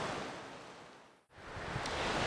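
Heavy rain pounds a tent roof in a dense, steady roar of hiss and patter, dropping out for a split second midway before surging back just as loud.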